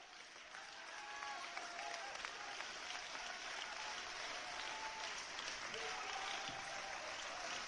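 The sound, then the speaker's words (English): An audience claps hands together in a sustained, dense burst of applause that fills the room steadily for several seconds, with faint voices and shouts mixed in. “Come on, for 10 more seconds, just clap your hands.”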